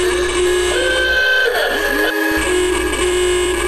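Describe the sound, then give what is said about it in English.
Many car horns blare together in a sustained, overlapping chorus, steady and loud throughout, with pitch bending slightly as individual horns come and go, from a crowd honking at Joe Biden's US election night speech. No voices. “Yeah, Joe Biden gave his election night speech to a crowd of honking car horns there.”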